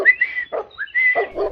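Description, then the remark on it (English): A dog named Buster barks in a few short bursts, moderately loud, mixed with high, thin whistle-like tones that rise and hold between the barks. “Any idea what he's barking at?”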